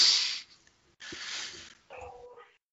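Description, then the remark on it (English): Two or three rough, breathy dog barks or huffs in quick succession, followed by a short whining yelp; no talking over them. The dogs are upstairs, meeting a visitor for the first time. “Yeah, apologize in the background weird. For any barking dogs.”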